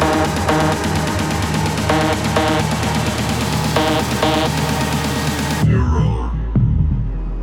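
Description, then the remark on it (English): Dense, busy electronic music suddenly drops out into muffled, low heartbeat-like throbs, a couple of deep, heavy pulsing thumps. “BPM selected. Heartbeat synchronized.”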